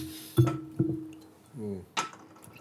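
Two bright glass clinks ring out, followed by a short gurgling pour of beer whose pitch rises as a glass fills, then a brief splashy burst; the sounds are moderately quiet with no talking.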